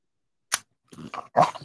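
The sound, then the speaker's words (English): A sharp click, then a dog gives two or three short, gruff barks right up close to a brand-new microphone, loud and slightly muffled. “I want him to bark.”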